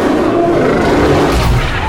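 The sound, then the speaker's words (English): A deep, rumbling roar of a shark monster, loud, held steadily for about two seconds with a rough, growling texture and no pause or voices. “He roars a lot, and it's just hot, and it's just full of teeth”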